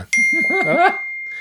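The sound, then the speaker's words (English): A phone rings with a short electronic ringtone: a bright tap, then a wavering melodic tune rising and falling over a thin, steady high tone, loud for about a second before fading. “Hello and hold on. My phone.”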